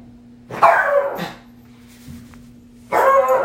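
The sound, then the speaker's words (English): A pet dog barks in two separate bursts, the first a quick pair of barks and the second a single loud bark after a pause, with a steady low hum underneath. “That's just my doggy.”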